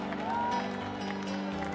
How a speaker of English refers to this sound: Stomp that foot.